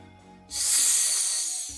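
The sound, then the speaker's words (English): A snake lets out one loud, sustained hiss that starts abruptly, holds for just over a second, then cuts off. No voices are heard. “You, Snake, come out. It's okay. You can talk to me.”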